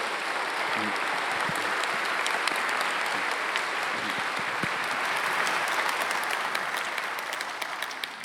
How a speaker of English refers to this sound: So let's give them a warm Lake Avenue welcome, you know, round of applause